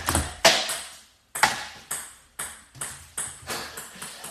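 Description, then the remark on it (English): A cup is knocked over with a sharp hard clack, followed by a series of ringing knocks as it rolls and settles, the hits coming quicker and lighter toward the end. “This man just knocked over the cup.”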